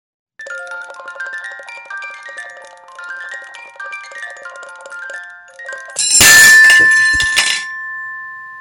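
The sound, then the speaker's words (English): A tinkling carousel-horse music box melody plays for several seconds, then a loud crashing smash of a sledgehammer cuts it off, leaving jangled ringing tones and a fading metallic hum. No one speaks. “Tommy, do you have a sledgehammer?”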